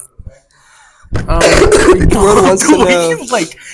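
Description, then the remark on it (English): A loud throat clearing with a rough, voiced rasp that drags on for about two seconds, after a couple of tiny clicks, with a cough-like edge and no clear words, as someone pulls away from a microphone to cough. “I watched you fight the urges to cough straight.”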